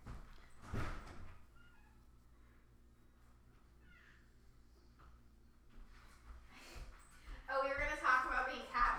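Someone knocks at a door and opens it with a short, sharp scrape and knock near the start to let out fighting cats, then a quiet stretch of room hum before loud, strained cat yowls break out toward the end.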